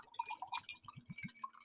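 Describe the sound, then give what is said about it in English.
Grizzly Beast bourbon, distilled in spring 2016 by Redwood Empire, poured as a small tasting sample into a glass, a short run of quick glugging splashes with a rising trickle, fairly quiet and heard on its own without any talking. “I'm going to pour a little sample there.”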